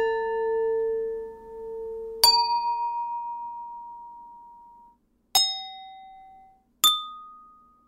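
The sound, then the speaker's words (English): A drinking glass is struck three times, each tap leaving a clear, bright ringing tone that fades slowly; an earlier ring is already sounding at the start. No talking. “If you hit another glass, it might go pong.”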